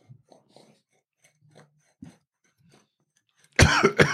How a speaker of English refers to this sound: I cough you see, once.